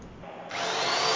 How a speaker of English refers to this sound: I'm drilling the hole.